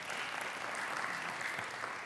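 Steady applause from a crowd, many hands clapping in a dense, even wash of sound that holds at a constant level throughout.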